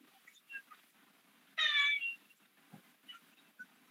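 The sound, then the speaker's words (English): A single loud cat meow rings out, a short rising-and-falling cry lasting about half a second, set against faint background noises. “Your cat just said, fuck.”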